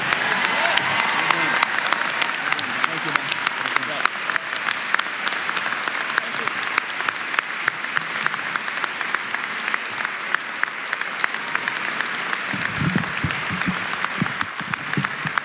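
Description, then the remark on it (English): A large crowd claps steadily and loudly for Denver Mayor Michael B. Hancock after his speech, a dense, continuous wash of applause lasting the whole stretch, with scattered cheers mixed in and no pause or letup. “Give it up one more time for Mayor Michael B.”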